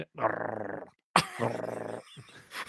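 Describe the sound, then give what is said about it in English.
A man growls like an animal in two sustained, rumbling bursts with a short pause between, the second opening with a sharp harsh onset, fairly loud. “He is also making animal growling sounds.”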